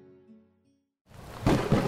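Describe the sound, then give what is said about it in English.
A soft tonal hum fades to near silence, then a thunderstorm bursts in: loud, broad rushing rain and rumbling noise that swells in surges, with no voices. “Our magic put a storm in the sky that has rendered the surface of our planet uninhabitable.”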